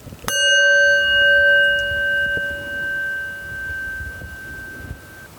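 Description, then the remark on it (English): A single meditation chime is struck once to begin a breathing meditation, its bright metallic tone ringing out clearly and slowly fading over several seconds, with no voices. “That was a sad sounding chime.”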